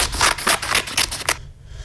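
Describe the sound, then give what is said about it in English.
Scissors cut through stiff construction paper in a quick run of about six crisp, rhythmic snips, fairly loud, then stop abruptly into near silence. No one speaks. “Oh, it's scissors cutting paper.”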